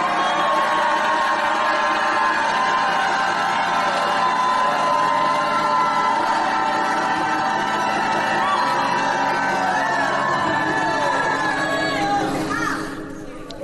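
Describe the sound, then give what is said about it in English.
An audience shouts, whoops and cheers together in a loud, sustained roar of many overlapping voices for over ten seconds before beginning to fade. “Well, lift your hands and shout like you never shouted in your life.”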